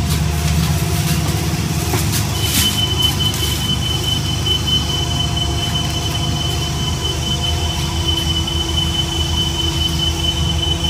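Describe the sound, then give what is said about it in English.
Steady, loud rumble of a moving bus heading to the airport, heard from inside the cabin, a constant low engine drone with faint high whining tones running through it, and no one talking. “I want to prove that I am in fact going to the that I am in fact on the bus going to the airport.”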